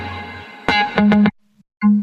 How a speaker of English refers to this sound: But yeah, it's a super simple guitar sound from Goliath. But I think I did a bit of processing.